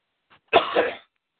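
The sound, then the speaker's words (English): A faint catch of breath followed by a single harsh cough with a second rougher burst, about half a second of throaty noise, then silence. No one speaks. “one of these days I'm going to shake this cough.”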